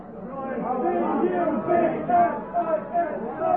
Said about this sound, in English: Dublin, hear that? That's the Dublin crowd trying to outshout the Cork crowd that are singing live, alive, all.